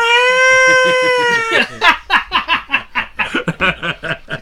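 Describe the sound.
A voice lets out a drawn-out, steady screeching cry imitating Godzilla's roar, thin and almost catlike, then breaks into several seconds of quick, choppy laughter.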